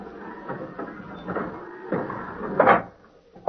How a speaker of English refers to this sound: Close the gate, orderly. Yes, sir.